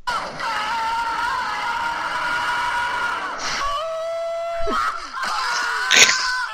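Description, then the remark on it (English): A compilation of the film character Marty McFly screaming, voiced by Michael J. Fox: one long, sustained high yell, then a shorter strained cry and a few abrupt, choppy shouts, loud. “Then here's a compilation of Marty McFly screaming.”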